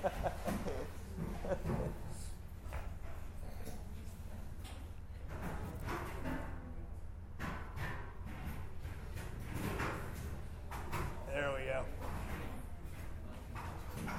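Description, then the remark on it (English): Chairs scrape and thump across the floor in irregular bursts as a group of men move them into place and set them up, with a steady room rumble and faint indistinct voices in the background. “So let's let them get their chairs set up for these fellas.”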